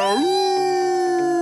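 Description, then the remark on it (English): A human voice imitates a wolf howl: one sustained, loud tone that swoops upward at the start, then holds steady for over a second with no other sounds around it. “I'll howl to that.”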